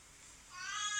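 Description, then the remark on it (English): A cat meows once in the morning, a drawn-out, tonal cry that begins midway and swells slightly louder toward the end, heard alone with no talking. “The morning started at some sort of with the cat.”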